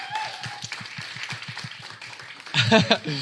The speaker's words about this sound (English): They were all really, really wonderful pieces, and I think you all brought something different to the night. So yeah, can we have a round of applause for our features, please?